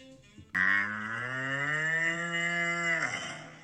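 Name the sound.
cow mooing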